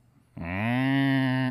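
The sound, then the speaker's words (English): A person makes a deep, growling moo like a cow, an attempted Chewbacca impression: one steady drawn-out call that starts abruptly after a brief pause and holds loud for about a second. “That's more like a cow, I guess.”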